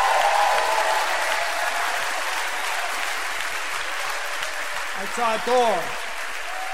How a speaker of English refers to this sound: Come on, give the Lord a shout and a clap right now.